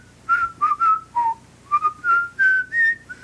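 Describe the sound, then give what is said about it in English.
A person whistles a short tune, a string of clear, pitched notes rising and falling in a melodic phrase, with brief gaps between them and no talking. “It's like they whistle part of it.”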